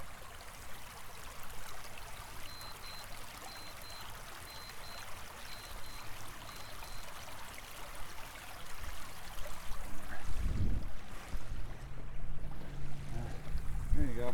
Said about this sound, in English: We're going to take a running water break.